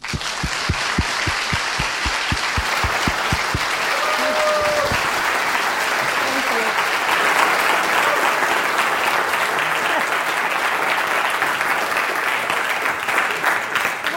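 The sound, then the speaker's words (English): Loud, rousing applause from a crowd welcoming a speaker being introduced fills the whole stretch, steady and dense. Early on a thumping low beat pulses beneath it, and a few whistles or cheers rise briefly over the clapping. “Let's make him and Vicki proud by giving her a rousing applause.”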